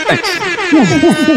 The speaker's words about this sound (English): I was like, yeah, I just kept pressing air horns.